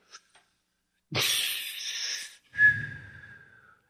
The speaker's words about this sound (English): What was the second thing? Was that like a butane lighter? It's a whistle. You know these whistle lollipops?